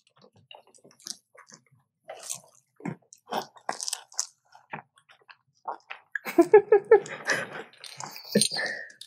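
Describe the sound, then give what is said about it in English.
Crunching as someone bites into salty, crisp food and chews, a string of sharp irregular crackles building into a denser burst of loud chewing near the end, with faint murmurs between bites. “This is salty, but I love the crunch.”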